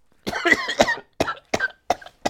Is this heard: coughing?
yes